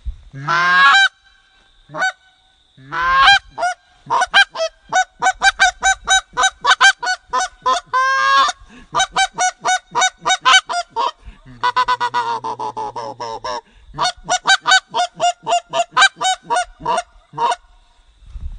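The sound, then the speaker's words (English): Aggressive duck calling with clucks, used to finish the birds: a long run of loud honking notes, starting with spaced bursts and building into rapid, rhythmic strings of short clucks, with no talking. “And generally you'll finish the birds after that last cluck, cluck, cluck, cluck, cluck, cluck, cluck.”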